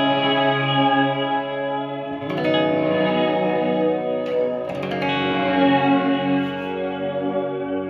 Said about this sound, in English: It's a pitch shifting reverb. It goes two different ways. It's pretty weird.